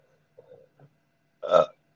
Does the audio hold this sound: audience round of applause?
no